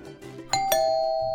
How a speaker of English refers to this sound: Mom, doorbell.